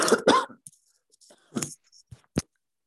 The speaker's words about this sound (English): excuse me, I have a cough.